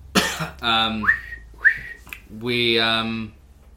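human body sound, human whistling attempt

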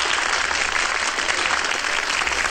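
sound effect, applause sound effect played

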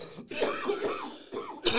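human body sound, coughing

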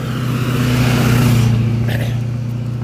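vehicle, pickup truck driving past

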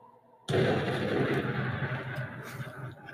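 sound effect, explosion sound effect

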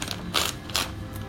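household object, paper being torn

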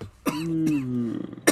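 human body sound, coughing

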